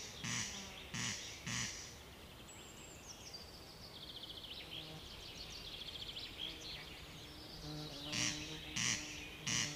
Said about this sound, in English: Corncrakes prefer areas with lots of tall plant cover, where they spend most of their time hidden from view. Often the only sign a corncrake is present is the strange call given from dusk till dawn.